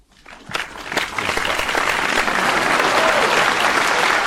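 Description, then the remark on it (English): Audience applause starts with a few scattered claps, then swells quickly into dense, steady clapping from a large crowd that stays loud and sustained to the end. “That was too much clapping.”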